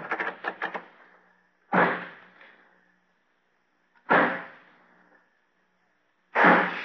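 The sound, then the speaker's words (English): A door being locked from outside with keys: a quick metallic rattle, then three heavy bangs about two seconds apart, each ringing out briefly. No one speaks. “I'll lock this door on the outside.”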